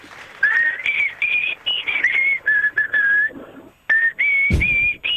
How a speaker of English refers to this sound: were you singing that or whistling it? Because it sounded like whistling.